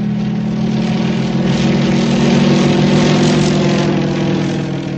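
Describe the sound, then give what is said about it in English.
A propeller airplane engine drones steadily and loudly for the whole stretch, a continuous low rumbling hum that swells slightly in the middle, with no voices. “In the air.”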